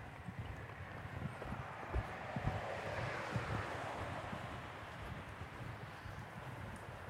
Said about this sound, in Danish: Graffiti her i tunnelen. Kan du høre tunnelen?